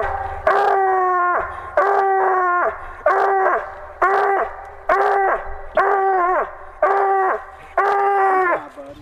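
An 11-month-old hunting hound pup bays at a tree, giving about eight long, drawn-out bawling barks in a steady rhythm, loud, with no voices.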